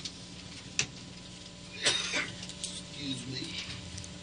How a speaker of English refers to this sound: Excuse me while I clear my throat.